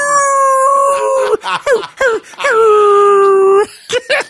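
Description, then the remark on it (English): A long, wavering wolf howl, then a few short rising yelps, another sustained high howl that slowly falls, and two brief yips to finish. “That howling wolf.”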